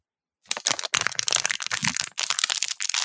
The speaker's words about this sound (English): So then you shouldn't even have a bottle of water because when you squeeze it, what happens? What happens when you squeeze a bottle of water?